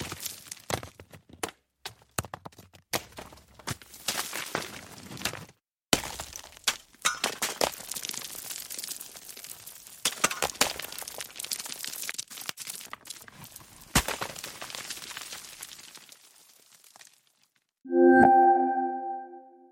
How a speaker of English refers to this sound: Various types of pebble, dust, dirt, and debris, along with some smashing rock impacts. Good for adding detail to the tail of an explosion, for example.